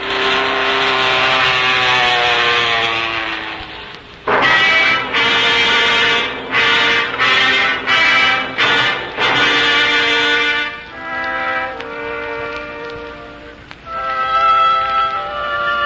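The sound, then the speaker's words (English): A loud airplane engine drones with a steady, buzzing whine, then begins cutting out in a series of abrupt stutters before sputtering unevenly and surging again. No voices are heard. “Well, it's an airplane. And it seems to be in trouble.”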